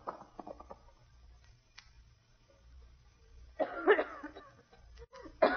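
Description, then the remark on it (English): A woman coughs in a harsh burst of several coughs, then one more short cough moments later, after a stretch of faint, low background noise. No one speaks. “Try to stop coughing.”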